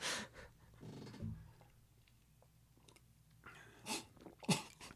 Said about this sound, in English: Too spicy? I coughed before it even hit my mouth. Just the aura of it made me cough.